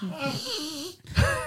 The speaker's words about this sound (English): I'm a little concerned when you sniffed in, your nose made noise. You got to make sure. No, you got to do it with your mouth open,